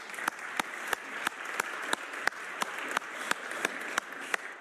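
A church audience applauds the day's preacher, the diocese's director of mission, in a steady patter of many hands, with sharper individual claps punctuating the wash at a regular rhythm. No voices are heard.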